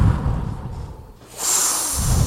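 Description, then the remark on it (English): A voice imitates a wind blowing rhythmically down into a stairway: a low, rough rush of air that fades, then a brighter, hissing breath swells and holds, like a slow inhale and exhale. “This might sound kind of odd, but it's almost like a wind blowing past you down into the stair, but it blows rhythmically, or maybe there's a sucking down in there.”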